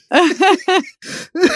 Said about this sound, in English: Coughs are hard to get rid of.